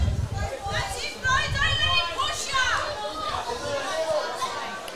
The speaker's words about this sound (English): Crowd heavily invested in this grand final, as you'd expect.